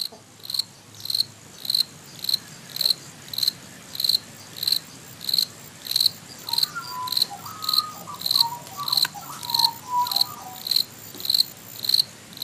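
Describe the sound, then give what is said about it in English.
Crickets near Sydney chirp in a steady, rapid rhythm, their bright pulses repeating about twice a second, clear, with a faint, brief warbling call in the background midway through. “She sent me a gorgeous little collection of recordings, including this wonderfully clear sound of crickets.”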